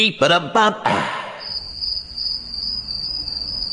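A brief burst of voice fades out, then crickets take over with a steady, high-pitched continuous trill that carries on unbroken at moderate loudness against a quiet night background.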